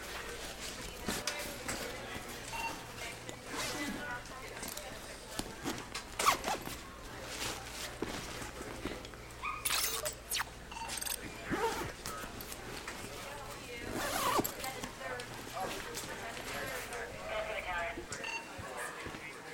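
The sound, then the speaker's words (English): A bag zipper is pulled in a series of quick, raspy strokes, fairly loud, over a steady low hum with faint voices murmuring in the background. “Zip your bag for me, please.”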